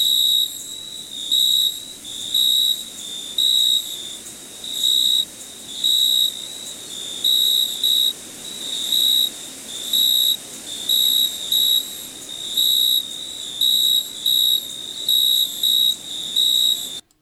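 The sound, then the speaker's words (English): Crickets chirp steadily, high-pitched trilling pulses repeating in a regular rhythm throughout, with no voices and only a faint background hiss. “Those are crickets. Related to grasshoppers, you hear them chirping away at night usually, calling one another, looking for a mate.”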